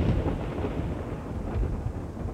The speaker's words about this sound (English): He was angry, too. His anger was in the storm somehow. Somehow his anger and the storm were one and the same. And the storm was getting closer.